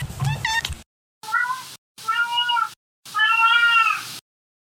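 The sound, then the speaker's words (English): A cat named Winston meows four times in close succession, the calls clear, each one a drawn-out, slightly rising wail separated by brief silences, the last the longest. “and sometimes my cat Winston joins me.”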